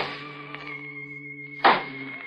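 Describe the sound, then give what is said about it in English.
A steady, low droning hum runs throughout, broken once by a single sharp wooden knock of a cane tapped on the floor, with a fainter tap earlier on. “I picked up the cane and began tapping on the floor.”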